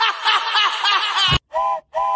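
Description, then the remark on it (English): A loud, sustained steam train whistle wails for over a second, then two short, sharp toots follow in quick succession, clear with no talking. “the train is leaving the station for the Discharge Depot”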